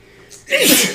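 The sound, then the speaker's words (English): A single loud sneeze bursts out after a brief breathy intake, a sharp noisy blast that trails off quickly with no talking around it. “Bless you.”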